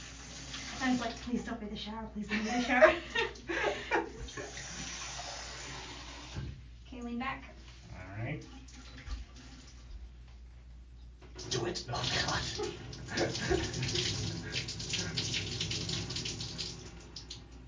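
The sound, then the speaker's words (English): Shower water runs with a steady hiss that swells loudly in the second half, while a person talks over the spray near the start. “Please don't be in the shower. Please leave the shower.”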